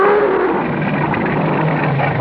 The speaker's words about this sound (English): First, he will growl, challenging us to move against him or to run. He would prefer us to run. Then his growl will become more ferocious.